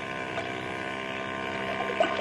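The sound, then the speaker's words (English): A steady motorboat engine drones across the water, a continuous mid-level hum with even harmonic tones that hold constant throughout, with no voices present. “look through these night glasses and see if that's the same boat.”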